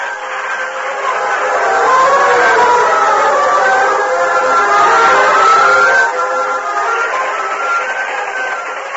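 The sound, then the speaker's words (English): A train rolls along moonlit tracks with a steady mechanical roar and wavering, whistle-like tones, holding fairly loud before easing off slightly toward the end as it moves away into the distance. “stood beside the moonlit tracks, watching the train disappear in the distance.”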